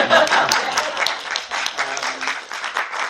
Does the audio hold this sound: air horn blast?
no